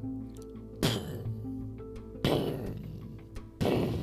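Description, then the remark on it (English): Three heavy, booming thuds land at a slow, steady pace about a second and a half apart, the thundering, ground-shaking footsteps of a huge eight-armed monster with a woman's head and torso, taller than the mountains, each ringing out over a low rumbling drone. “They heard the thundering footsteps of this strange being as it headed their way.”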